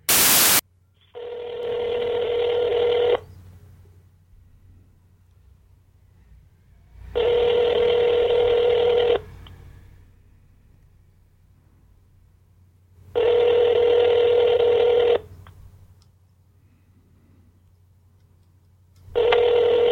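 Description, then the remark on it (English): A phone line rings out in steady, evenly spaced bursts, each ring lasting about two seconds with quiet pauses between, after a brief click of dialing at the start, as a call is placed live on air to a man in Alabama, reaching his voicemail. No one speaks. “We should totally call him. Do you just want to call him? Like right now?”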